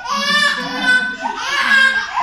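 A baby fusses and cries, loud, continuous wails rising and falling in pitch across two drawn-out bursts.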